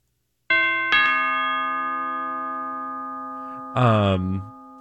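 A doorbell chime rings out clearly: two quick tones struck in succession that hang and slowly fade over a few seconds, cut off by a brief, loud vocal burst at the end.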